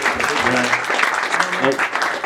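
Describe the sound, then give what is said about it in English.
A steady round of applause, dense and fairly loud throughout, with a few voices calling out or cheering over the clapping. “Guys, get a round of applause”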